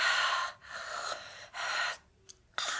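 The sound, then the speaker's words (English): A woman's heavy, rasping breaths come in quick bursts, several loud gasping inhales and exhales, broken by short silences and a sharp final catch of breath. “This is where her breathing gets heavier.”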